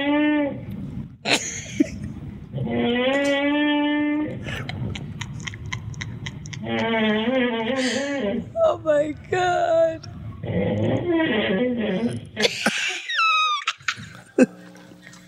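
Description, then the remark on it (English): A loud, strange snore from a man who fell asleep after about 48 hours without sleeping, with drawn-out, buzzing tones that rise and fall, broken by short snorts and a high whistling squeal near the end, while someone briefly exclaims. “Now, I've heard snores, but ladies and gentlemen, what you're about to hear right now is a version of a snore you've never heard in your whole Exclusive.”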